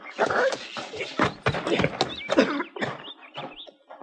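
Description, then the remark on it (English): A horse nickers and whinnies while its hooves shuffle and thud irregularly, with short snorting breaths between the calls, as its rider gets off the horse. “Get off your horse.”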